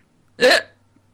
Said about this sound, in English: No, that's what my hiccups sound like. They're not the, like, clean hiccup. Hiccough of others. It's just, like, a croaking groan.